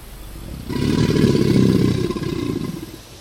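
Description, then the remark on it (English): A deep, rumbling alligator bellow, a growling mating call, from an alligator by the Twin Canals, swells in after a quiet start, a low vibrating growl with a rough, throaty texture that holds for about two seconds before fading out. No one speaks. “That's that growling. That mating. I think it's something to do with mating.”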